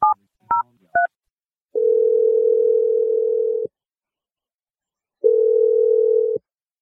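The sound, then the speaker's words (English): Three quick keypad tones as a phone number is dialed, then a steady telephone ringing tone sounds twice, each about two seconds long with a pause between, clear with no talking. “Let's dial the phone number and hopefully he picks up.”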